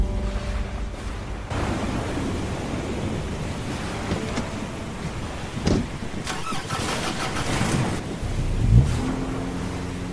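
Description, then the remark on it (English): A car engine cranks and turns over, then settles into a steady idle with a brief rev, under a wash of rain-like noise and no talking. “I pulled my coat closed tightly and slowly made for the car.”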